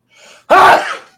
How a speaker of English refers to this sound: Ah! All right, I'm better. Sorry about that. The dramatics that went into that sneeze.